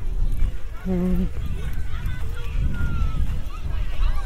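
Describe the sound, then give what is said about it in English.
Children's voices shout and call over a steady outdoor rumble, with faint water sloshing and breezy wind noise on the microphone: school children playing in a natural sea pool on the coast. “Like a sea pool, and it's got a load of school children playing in it.”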